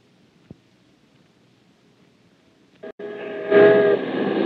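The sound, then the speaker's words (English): After a few seconds of near silence with a faint low rumble and a single click, loud warning bells break out in New York City, ringing with sustained, overlapping metallic tones over a dense wash of noise. They ring to warn people to evacuate the city as Martians approach, heard from the roof of Broadcasting Building. “The bells you hear are ringing to warn the people to evacuate the city as Martians approach.”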